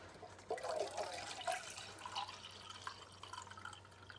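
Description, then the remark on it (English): Water from a kitchen sink runs steadily into a can, a fairly quiet trickling and splashing with a few bright gurgling notes near the start and a low hum underneath, while a finger inside the can feels the water level. “So I feel the water, it's gotten to a certain point. It hasn't gotten all the way to the top, I felt it.”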